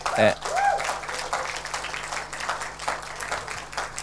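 A church audience at Life Source applauds a visiting pastor and her translator as they come up, with a steady, dense patter of clapping that lasts throughout, opening with a brief whoop or cheer and holding at a fairly even loudness.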